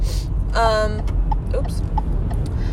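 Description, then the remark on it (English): Steady road rumble inside a moving car on its way to the gym, with the car's turn-signal blinker ticking softly at a regular pace, plus a brief tonal hum early on and other cars passing outside. “I am on my way to the gym, so that's my blinker, and there's cars, so, you know.”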